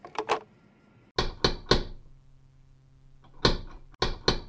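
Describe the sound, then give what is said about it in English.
Sharp knocks on a door come in quick clusters of three, pausing between each round, with a final pair of raps at the end. No one speaks. “Yeah, wait to make answering the door sound cooler than it needs to be.”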